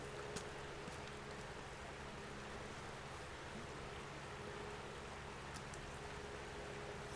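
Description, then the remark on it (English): A fire is adjusted beneath a pot of syrup to get it boiling: a steady rushing roar with a low hum, broken by a few sharp crackles and pops. No one speaks. “Okay, guys, I'm getting the reason I wasn't talking there is because I was adjusting a fire. I'm trying to get some bubbles going. Boiling bubbles.”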